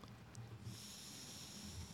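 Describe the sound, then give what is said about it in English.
Steady breathy draws of air, someone inhaling and exhaling from two vapes at once, a nicotine vape and a THC vape, with a soft hiss and low rumbling airflow running continuously and no talking. “I do my nicotine vape and my THC vape at the same time.”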